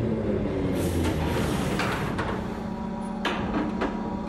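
A tram moans down Nassau Street into the darkness with a low, steady drone and a faint whining hum, broken by a few sharp metallic clanks and rattles from the wheels and carriage. No one speaks.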